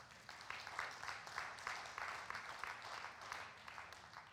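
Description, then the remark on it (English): A crowd claps over the gospel message during a sermon, a dense patter of many hands at a fairly even, moderate volume for several seconds, with bright peaks recurring in a loose rhythm and no voices on top. “And now he says, this gospel, the one that you just clapped over, this gospel is bearing fruit and growing throughout the world.”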